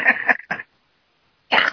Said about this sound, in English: Okay, I may cough a bit. My meds make me cough sometimes.